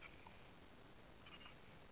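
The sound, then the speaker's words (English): A cat purring, a steady, rough rumble that holds without pause for the whole stretch, with no one talking. “the cat decided to join me right this instant.”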